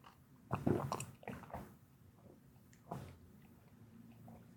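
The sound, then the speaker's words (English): A person drinks water, with a few wet gulps and swallowing sounds spaced over several seconds, plus soft mouth noises and breaths between them. No one speaks. “That's me drinking water and calming down.”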